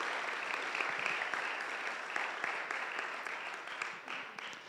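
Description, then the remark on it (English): An audience at a church service claps steadily for several seconds for the interns and their helpers, a dense, even wash of handclaps that holds at a consistent level before easing slightly toward the end. “So can we give a round of applause to all those people?”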